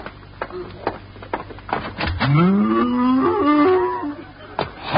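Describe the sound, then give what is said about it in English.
A single long cow moo in the radio comedy Our Miss Brooks swells up and holds for about two seconds, loud, with a few soft knocks and clicks scattered before and after it. “Holy cow!”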